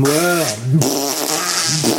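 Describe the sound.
A voice blows a wet, buzzing raspberry that imitates a fart, stretched out over about two seconds with wobbling pitch, loud.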